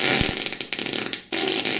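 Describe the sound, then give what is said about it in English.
A loud, raspy fart sound effect sputters for nearly two seconds, with a brief break just before the end and then a final buzzy burst. No one speaks. “So you're going to fart on a guy that's trying to better himself?”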